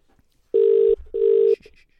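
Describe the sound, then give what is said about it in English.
A phone line ringing out on an outgoing call being made: two loud, steady electronic ring tones separated by a brief gap, followed by a few faint, short high blips. No one speaks. “I'm going to phone him back.”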